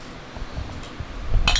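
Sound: beer bottles clinking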